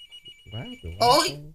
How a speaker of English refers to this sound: Oh, yeah, answer the phone first.